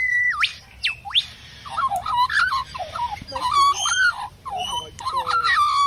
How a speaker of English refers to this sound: So the lyrebird is famous for being able to impersonate other things. This is the lyrebird impersonating a range of other birds.